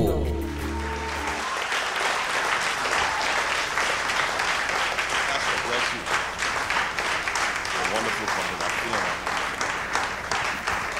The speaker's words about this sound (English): Breakout Conference 2018. With a resounding round of applause and a standing ovation, shall we welcome our speaker,